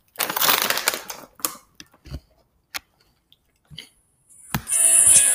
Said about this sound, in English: So right now I'm eating Kettle Brand potato chips, kettle potato chips. See, the flavor. So these were just like kind of not really fried, but more like baked. Which the flavor is sea salt and vinegar.